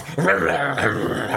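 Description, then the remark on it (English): A dog gives a low, continuous growl that slides into whiny, whimpering tones, one sustained vocal stretch with no talking over it. “Is there a dog trying to say something? Was that a dog?”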